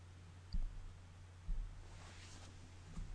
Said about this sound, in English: Okay, I'm just going to put you on speaker here because this phone receiver is kind of clicking on me.